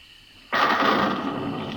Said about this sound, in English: What's that? Thunder